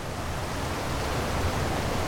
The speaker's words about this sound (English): as you can hear probably. I did make it to the river.